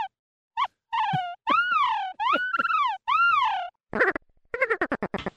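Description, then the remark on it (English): A synthesized seal call from an animal-emulating VST software plugin: a string of loud, nasal honks that swoop up and fall in pitch, followed by a quick burst of choppy, stuttering barks, with no talking. “Yeah, wait till you hear the seal.”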